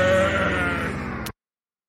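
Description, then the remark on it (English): A loud radio imaging stinger: a dense, growling, bleat-like tone that swells for just over a second, ends in a bright burst and cuts off abruptly into silence. “The hell is that? Holy cow, I got scared. That's called imaging, bro.”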